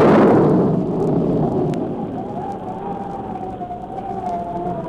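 Thunder of an approaching storm: a deep, rolling rumble swells loudly at the start, then slowly fades into a low steady roar, with a faint wavering tone drifting above it.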